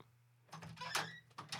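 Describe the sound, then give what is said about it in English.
A noisy door creaks and rattles open and shut over about a second, with scraping bursts and a clunk near the end, with a low hum beneath and no one speaking. “Noisy door sound!”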